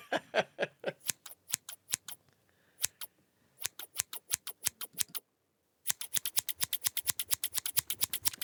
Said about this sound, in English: That is somebody with a pair of scissors cutting.